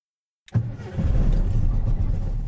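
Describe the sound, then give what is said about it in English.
After a moment of silence, a car engine cranks as the key is turned and catches, then settles into a steady, loud low rumble with no one talking. “To my surprise, the engine started.”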